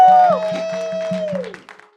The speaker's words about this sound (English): I am dressed this way, not because that's the whatever, but because today is graduation wow. Sunday. Clap for the Lord Jesus. Woo!